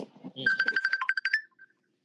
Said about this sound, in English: That's your joint beeping? Yeah, I got to take this phone, but we talking.